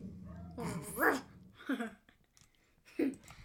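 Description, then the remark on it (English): A dog barks three times at uneven intervals, the first bark longer and louder, the later two shorter, with quiet room noise in the gaps. “The dog stopped barking, so I can be heard again.”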